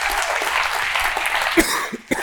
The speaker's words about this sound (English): Now listen, if y'all gonna clap, don't be giving me no little pity pat claps. Now I need that real good Holy Ghost hallelujah clap. Amen.